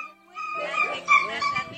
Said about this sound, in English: So obviously climbing over a fence here. Yeah, he's all stuck. And dog is just all tangled up in this awning that fell over.